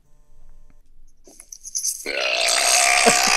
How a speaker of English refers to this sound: Burp one more time for us, random caller.